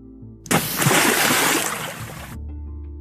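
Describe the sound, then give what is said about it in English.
A person falling from a great height lands in a body of water with a big, loud, abrupt splash, followed by about two seconds of churning, sloshing water before it cuts off. No voices are heard. “landed and made a big splash that took much of the water out.”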